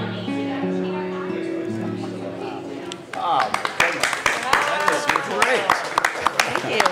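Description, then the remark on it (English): A held musical phrase fades out, then people in a restaurant break into scattered, uneven clapping, a dozen or so sharp claps mixed with murmured chatter and voices. “Look, there's even people in the restaurant are clapping.”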